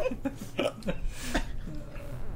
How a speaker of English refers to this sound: Oh no, I got the hiccups. Oh boy.